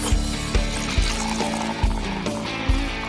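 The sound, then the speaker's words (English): A drink is poured into a glass, a steady liquid splash running for a few seconds over a soft musical backing with low, regular beats. “It's time to pour yourself a drink and enjoy a happy half hour with an entrepreneur.”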